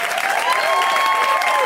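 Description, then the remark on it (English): Steady, dense audience applause for performer Adam Burke at a live show, many hands clapping at once in a continuous wash of sound, with a faint high whistle or cheer riding over it and no voices talking. “So give it up for Adam Burke one more time.”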